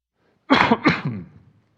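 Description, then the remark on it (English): A loud cough in a quick burst of two or three harsh bursts, trailing off into a brief rasp, with no talking around it. “Well, I turned it on so you can hear me cough.”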